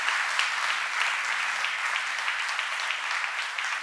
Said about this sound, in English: Can you give a clap for that? So good. So good.